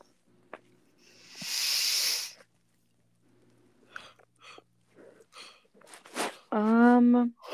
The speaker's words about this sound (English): The yawning isn't a hint. I'm just tired. It kind of is, but not intentional.